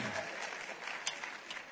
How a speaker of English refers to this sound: Your applause has encouraged me so much. I'm willing to take another step.